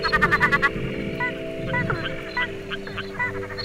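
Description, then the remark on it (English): A chorus of frogs calls during the Tiwi wet season, Damatukari (December to February), starting with a fast burst of rattling pulses, then scattered, repeated croaks and chirps over a steady background drone. “You can hear frogs everywhere.”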